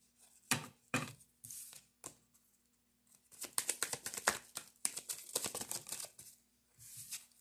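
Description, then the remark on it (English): Shuffling of a deck of tarot cards for a reading: a few sharp, separate snaps early on, then a dense flurry of crisp riffling and slapping, with no talking. “I'm going to cut this bad boy, and we are going to get right on into it. Let's do some shuffling.”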